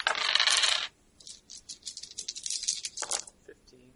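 Five dice, rolled during a tabletop game, rattle loudly, then tumble and clatter across a hard tabletop in a quick run of small clicks that settle after a few seconds.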